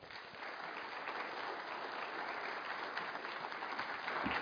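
A steady wash of audience applause, many hands clapping together at a consistent level for several seconds, dense and continuous with no voices standing out.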